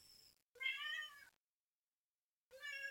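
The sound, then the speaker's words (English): A cat meows loudly: a short cry, a drawn-out wail, then after a pause of silence another meow that gets cut off. No one speaks. “You fucking cat.”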